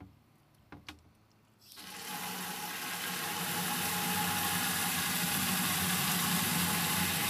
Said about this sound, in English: Are you filling water in a bucket? Well, we can't hear the sound. What happened to it? Oh, we can hear it. Oh, we can hear it for sure. We can hear it. So are you filling water in a bucket?